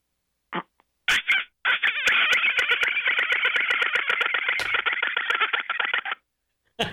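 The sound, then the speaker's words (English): A woman imitates a dolphin call over the phone: a few short squeaky bursts, then a long, rapid clicking chatter lasting several seconds, loud and thin, as heard over a phone line. “And kids would come up to me and they'd go, aren't you the dolphin call lady?”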